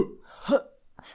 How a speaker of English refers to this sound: Sorry, that made me cough.